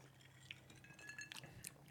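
A few light, ringing clinks of cocktail glasses touching in a toast, the glasses holding a bourbon, lemon juice, grapefruit juice, triple sec and simple syrup cocktail, faint and scattered over a couple of seconds against a quiet background hum, with no talking.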